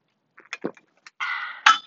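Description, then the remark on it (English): A few light metallic clinks of a metal straw against a can of organic coconut water, then a steady sipping slurp through the straw that ends in a brighter clink. No one speaks. “Hi, it's me, but in 2021, that is me drinking my organic coconut water in a can and with a metal straw.”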